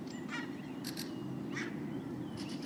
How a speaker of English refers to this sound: And now there's a small bird coming here, checking for something nice to eat under you.